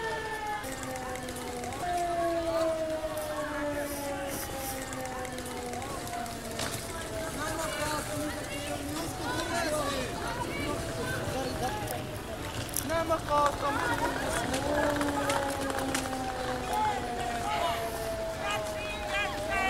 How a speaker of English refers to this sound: But now again, this is kind of the sense of how it feels when there's things flying through the sky. So we'll just go to the video clip. This is an air raid siren going off.